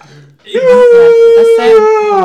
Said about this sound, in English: He yawns really loudly. Yeah. Brilliant. That's the trick. That really does it.